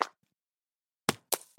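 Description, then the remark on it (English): Acorns falling and landing in a few sharp, hollow knocks, about four short taps spaced irregularly with silence between them, the middle pair coming close together. “I hear acorns falling down”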